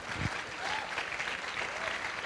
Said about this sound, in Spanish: Aplaude al Señor si quiere aplaudirlo.